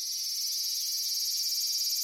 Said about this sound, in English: And the males, they have these special noise-making membranes that they click. For example, here's a Japanese large brown cicada, or aburazemi.